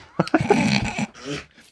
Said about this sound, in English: Hi, dog. Studio dog has just entered the room. She was making her presence known outside of the studio control room.